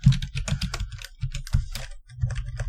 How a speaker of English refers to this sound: Furiously typing. Yeah. Furious typing.